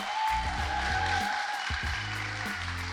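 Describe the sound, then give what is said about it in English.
An audience in Arizona claps steadily, a dense, even wash of hand claps lasting the whole moment, mixed with a low droning hum underneath and no voices. “This is a good time to clap.”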